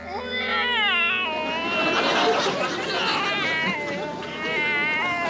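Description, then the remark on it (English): A man crawling in the bushes next to a house imitates a cat, letting out drawn-out, wavering meows and yowls that run almost continuously for several seconds, loud with no other talk. “He acts like a cat.”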